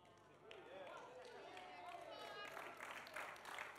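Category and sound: crowd, weak audience clapping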